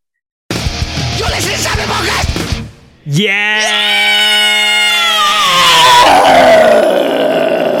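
A loud heavy metal style vocal scream: a harsh, gravelly roar for a couple of seconds, a brief break, then a high piercing shriek that swoops upward and holds for several seconds.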